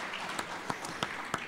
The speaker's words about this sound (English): Maybe we can even just give him a round of applause. Yeah. Come on.